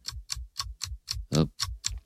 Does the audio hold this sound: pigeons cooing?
no